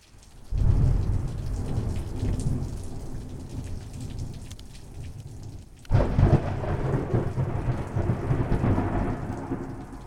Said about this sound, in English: it was such a delight to spend an evening cozied in my studio with a glass of Prosecco, listening to her wisdom and enjoying the surprise thunderstorm that moved over during our conversation.